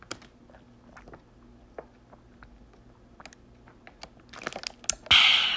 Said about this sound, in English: Speaking of, do a little water break, take a sip.